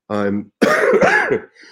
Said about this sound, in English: and putting up with my cough.